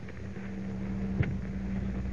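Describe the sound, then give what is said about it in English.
The huge fan of a wind tunnel for testing new plane models at an aircraft plant starts up. Its deep mechanical drone hums steadily with a low tonal whine over rushing air noise, and a single soft thump lands midway. No voices are heard. “Professor, that fan is starting up.”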